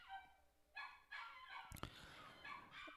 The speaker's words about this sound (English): Can you hear my dogs singing? They're singing a little song. They're singing in perfect harmony.